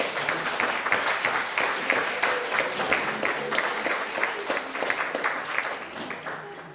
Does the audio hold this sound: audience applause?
yes